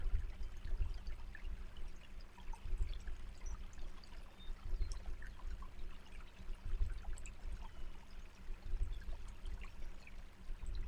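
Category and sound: nature, flowing creek water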